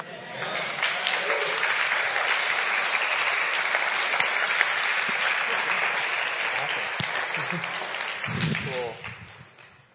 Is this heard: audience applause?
yes